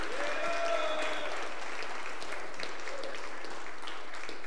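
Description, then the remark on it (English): An audience at a worship service claps their hands in praise in a dense, steady burst of applause, with a faint tonal whistle or voice sliding briefly at the start before the clapping continues evenly. “Clap your hands and rejoice. Clap your hands and praise him.”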